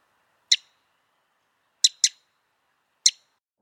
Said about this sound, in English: I first thought house wren, but there's actually something kind of winter wren-y about that. It's a winter wren.